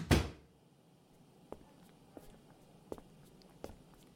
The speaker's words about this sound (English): She stood and left the room, gently closing the door behind her.